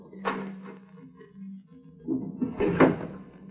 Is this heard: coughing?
no